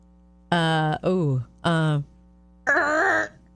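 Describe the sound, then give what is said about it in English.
A voice imitates a car screeching to a stop with four loud, strained bursts of harmonic squealing, the second sliding downward, the last higher and tenser, separated by short pauses. “All right, what about screeching to a stop?”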